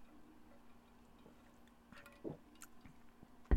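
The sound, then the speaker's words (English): Someone quietly drinking water, with soft wet gulps and small mouth clicks, ending with a sudden short knock as the drink is set down. “Let me take a water before we do that.”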